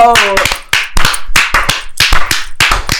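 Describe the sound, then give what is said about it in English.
Sharp hand claps in a steady double-clap beat, falling roughly in quick pairs, loud and crisp, with a brief voice at the very start. “Yo, see, I needed somebody else to do the other beat, so I could do the double clap beat.”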